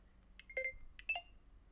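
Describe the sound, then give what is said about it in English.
Two short clusters of phone dialing tones, quick electronic beeps with paired pitches, as someone calls a person again, clear over a low background hum, with no talking. “We're going to give this motherfucker another call, man.”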